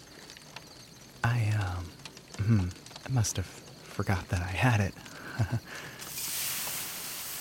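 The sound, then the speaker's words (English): A man speaks for several seconds, then a steady, bright hiss rises as a bucket full of water douses a campfire, the fizzing sizzle continuing evenly to the end without talk. “Oh, wow, that really put the fire out.”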